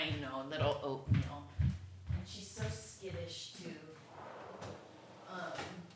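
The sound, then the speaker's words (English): A drawer of a cabinet made last year slides open and shut with a few wooden knocks and scrapes, while voices murmur throughout. “Cool drawer.”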